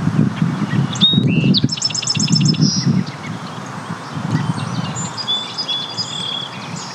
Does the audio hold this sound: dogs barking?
no